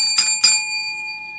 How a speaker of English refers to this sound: I just want to ring the bell.